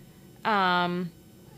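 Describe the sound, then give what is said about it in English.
A single drawn-out cat meow, clear, lasting just over half a second with a steady pitch that dips slightly at the end, with no talking around it. “Oh, man, these cats.”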